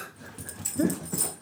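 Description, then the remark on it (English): A female dog having the nighttime zoomies whimpers and lets out a couple of short yips in quick bursts, moderately loud, with soft panting-like breaths between them and no talking. “Got the nighttime zoomies.”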